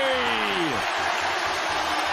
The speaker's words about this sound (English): Yeah, a lot of cheering.